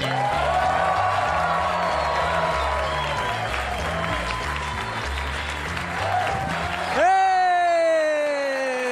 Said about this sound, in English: Your next comedian is also making his stand-up television debut right at this moment. Warm round of applause for Dave Temple.